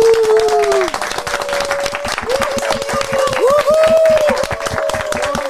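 An audience applauds steadily for several seconds, a dense patter of many hands clapping, loud and unbroken, with voices whooping and calling out above the clapping.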